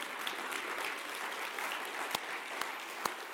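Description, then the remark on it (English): Steady applause from a large church audience at First Methodist Mansfield, a dense wash of many hands clapping together, with a few sharper individual claps standing out near the end. “And now you can clap.”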